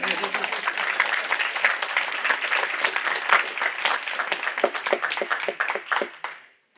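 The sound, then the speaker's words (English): A church audience claps steadily together, a dense run of overlapping hand claps that holds loud and even for several seconds before tapering off near the end. “That's the church clap right there.”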